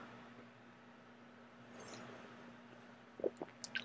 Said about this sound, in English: And I'm going to take a sip of my soda.